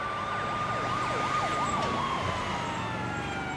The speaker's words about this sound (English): I winced as an ambulance passed by. The sound brought me back to that night when Dad...